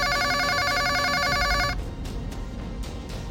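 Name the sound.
telephone ringing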